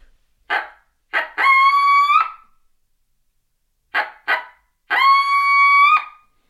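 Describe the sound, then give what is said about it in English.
A barking locator call, used to locate birds by getting them to gobble, sounds twice, loud: each time two sharp, quick barks followed by a long, drawn-out, howl-like note, with silence between the two sequences and no talking. “And you may bark, go, bark, howl.”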